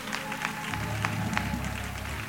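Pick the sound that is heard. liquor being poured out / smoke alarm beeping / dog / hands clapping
hands clapping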